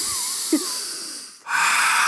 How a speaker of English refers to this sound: It's a lot of deep breathing. So you deep breathing. Let's do it together.